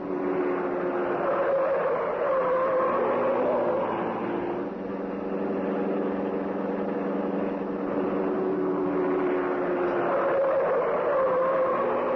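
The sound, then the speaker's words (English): The Green Hornet's car, the Black Beauty, speeds through city streets, its engine roaring with a droning pitch that surges upward as it accelerates, eases, then climbs again. Loud and continuous, with no voices. “the car of the Green Hornet whipped through the city streets.”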